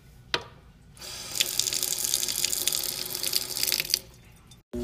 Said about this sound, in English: Water running.